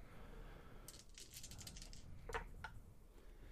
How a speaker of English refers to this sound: Okay, so go ahead and roll three dice.